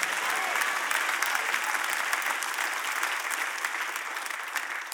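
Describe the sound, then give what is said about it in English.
An audience breaks into sustained applause, a dense, steady wash of many hands clapping at an even loudness for several seconds, with faint crowd murmur mixed in. “Hear what I said, because you might have clapped over it.”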